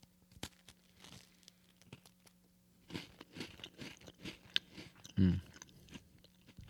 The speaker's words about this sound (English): In fact, this would be a good time for a little graham cracker break. Mm. crunchy. It's from Trader Joe's.